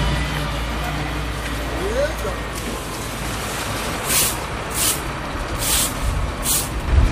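A Mack tractor-trailer truck idles with a steady low rumble, then lets out four short, sharp hisses of air brakes in quick succession.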